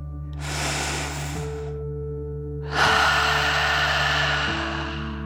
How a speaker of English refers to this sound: Breathe in through your nose, filling up your belly, and then out through your mouth, pretending you are breathing fire like a dragon. Ready? Deep breath in and out.